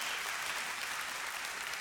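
Steady applause from an audience, a dense, even wash of many hands clapping at once, holding a constant loud level for the whole stretch with no voices standing out.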